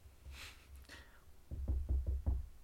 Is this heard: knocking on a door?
yes